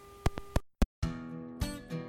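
A phone call going through: a few quick beeps and clicks give way to a steady electronic ringing tone that swells twice, with no one speaking.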